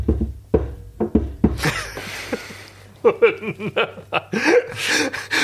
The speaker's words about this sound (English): Like, in Neustadt, in Germany, it would be knock. Pause, knock, knock, pause, knock, because that's how they read the numerology of whatever phrase he was supposed to. Right, and that was the Schulklopfer who would go from.